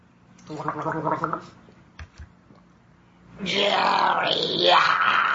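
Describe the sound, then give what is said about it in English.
Guttural gargling with water, made in the throat rather than the mouth: a short, rattling burst, a pause with a couple of soft clicks, then a longer, louder, raspier gargle whose pitch slides upward. “It's similar to gargle. So, water.”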